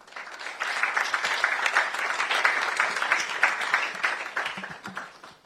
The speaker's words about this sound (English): Look at how you are clapping. Is it good?